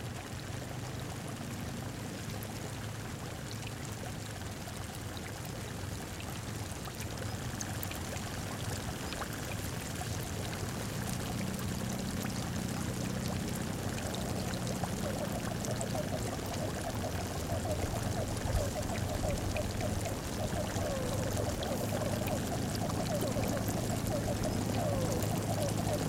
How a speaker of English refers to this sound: So if we jump to track number 5, then this is a kind of ambient recording of we're at the bend of the river here, and our ears are surrounded by these bubbling salt springs.